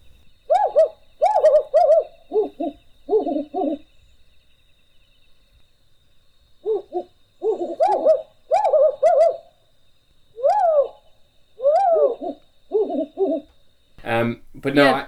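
A mated pair of wood owls call back and forth in a duet, a series of low, rhythmic hoots and rising wavering notes in clustered phrases with short pauses, fairly loud, ending with a rougher, noisier burst.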